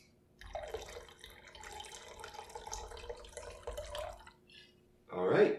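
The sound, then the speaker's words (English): Two ounces of Santa Teresa rum pour steadily into a cocktail shaker for about four seconds, a trickling splash, followed by a brief voice at the end. “1 ounce of simple syrup. Okay. And then 2 ounces of Santa Teresa rum.”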